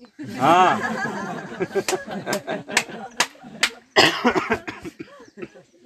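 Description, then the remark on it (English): A person coughs several times in short, sharp bursts, fairly loud, with talking mixed in around and between the coughs; it is not a COVID cough. “Sorry, that is not COVID cough, don't worry.”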